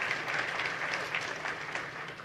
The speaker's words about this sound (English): You can applaud that. That's the good news.